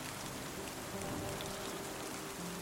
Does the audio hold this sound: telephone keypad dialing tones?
no